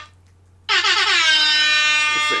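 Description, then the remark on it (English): A single loud air horn blast kicks in abruptly after a brief quiet moment and holds steady with a bright, brassy tone until the end. “It's the angry air horn zone.”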